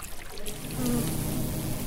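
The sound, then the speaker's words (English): A steady, droning hum of many bees buzzing around a hive, swelling slightly after a quieter start and holding continuously, with no one speaking. “What we're currently seeing now is quite a lot, or quite a group of bees just around the place.”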